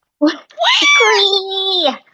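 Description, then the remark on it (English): A person voices a loud, drawn-out screech imitating an eagle caw, a short yelp first and then a long, strained, wavering cry lasting nearly two seconds, with nothing else around it. “I'll do like an eagle caw.”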